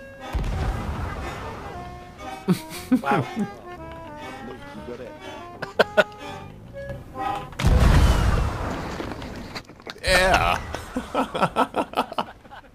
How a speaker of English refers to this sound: Oh, that was... whoever lined up that cannon, that was perfect. The bank shots off of the main mast are really nice.